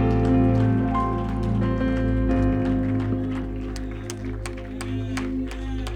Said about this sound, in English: Can you put your hands together one more time? Give the Lord a hand clap of praise.